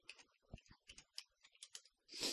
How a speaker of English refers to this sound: We're typing in the chat window, and I told him I'm vamping.